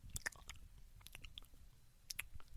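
Wet open-mouthed chewing of food with repeated smacking and squishy clicks in an irregular rhythm, loud and intimate, with no talking.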